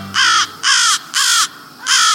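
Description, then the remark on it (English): Four loud, harsh caws from American crows flying overhead in the late afternoon, headed to their night roost, evenly spaced in a steady rhythm, clear with no voices. “American crows stream by overhead in the late afternoon.”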